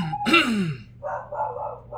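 A dog gives one loud bark with a sliding, yelping tone, then follows with a quieter, rough huffing vocalization for about a second.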